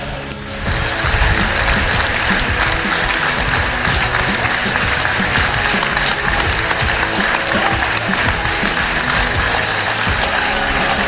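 A large stadium crowd at the Morecambe v Cambridge United football match gives a minute's applause for Morecambe fan Tom Dixon, a dense, sustained wash of clapping that swells in the first second and then holds loud and even throughout, with no voices standing out.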